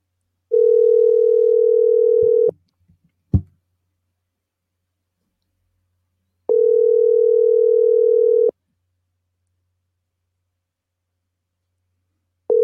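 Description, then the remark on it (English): Ringback tone of an outgoing phone call placed via the Subway Fresh Take hotline: steady two-second electronic rings separated by long silent gaps, with a brief click after the first ring and a third ring just starting. “I'm gonna get Ryan on the line then. Via the Subway Fresh Take hotline.”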